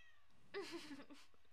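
A female cat lets out one drawn-out, wavering meow that rises and falls in pitch, fairly clear against a quiet background.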